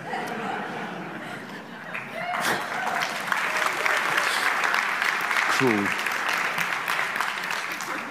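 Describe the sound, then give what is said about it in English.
Steady applause from a crowd at a church service as the band comes up, dense and sustained, with a brief spoken word and some murmuring mixed in. “Do you want to clap yourself as you come?”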